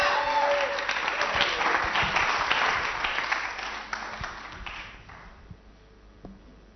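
An audience applauds to welcome a singer about to perform a song, a dense, steady wash of many hands clapping, holding strong for several seconds before thinning out and fading into a few scattered claps.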